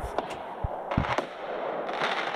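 Several fireworks and firecrackers pop and bang outside in quick, irregular bursts, some sharp cracks and a couple of deeper thumps, over a steady hiss of background noise.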